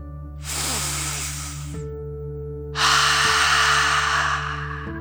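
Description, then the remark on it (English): A slow, deep breath drawn in through the nose, a short pause, then a longer, louder breathy exhale through the mouth, taken as a relaxation exercise, over a soft steady musical hum. “Deep breath, in and out.”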